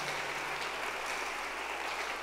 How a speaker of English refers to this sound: Clap your hands for this awesome God.